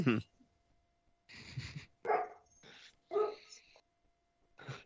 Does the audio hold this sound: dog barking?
yes